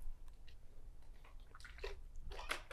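Wet, squishy slurping of a drink, a few short sips building to a louder burst near the end, fairly quiet, with no talking.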